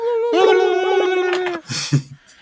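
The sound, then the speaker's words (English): A person lets out a long, sustained howl in imitation of a dog, steady and wavering for over a second, followed by a brief burst of breathy laughter or chatter. “You all meet up at the KB Toys and you go, Victory Howl!”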